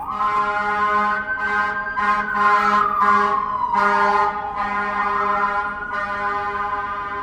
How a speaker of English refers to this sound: They really got to do something about this street, because I see a fire truck here every week.